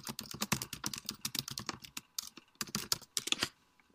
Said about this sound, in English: Okay, let's wait for his confirmation. I've just typed him on Skype. So I have let him know that I'm trying to contact him on Skype.